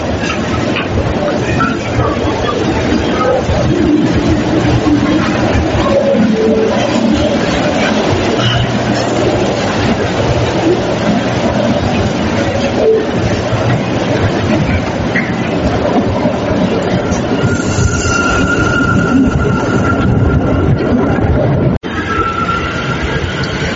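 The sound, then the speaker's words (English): A local subway train, its next stop Brooklyn, rumbles steadily along the tracks with a dense, continuous roar, faint squeals and tonal whines rising near the end before a brief drop in noise. “This is a super talking about the local train. The next stop is Brooklyn.”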